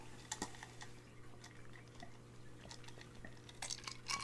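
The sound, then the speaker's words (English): Someone takes a drink: a few sharp, light clinks and clicks, like a glass or can being handled, with soft swallowing sounds over a steady low hum, and no talking. “You know, I gotta take a drink, but it's real life here.”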